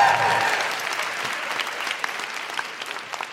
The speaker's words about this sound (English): And when we get there, we're just going to have a big cheer for the sisterhood / siblinghood. Is that? Woo!